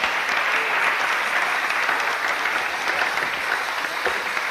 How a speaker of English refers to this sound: Praise the Lord. Give him a clap. Praise the Lord.